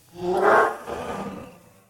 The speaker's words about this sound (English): Nope. No dragon. No roar. Oh, well. I heard the roar.